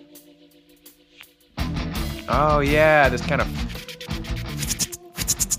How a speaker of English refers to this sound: Like, do you know what, like, that card shuffler thing sound that's going on in the background? Do you hear that?